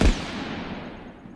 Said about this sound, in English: He was supposed to wait until he heard the gunshots, and then he and his team were supposed to come around the hill.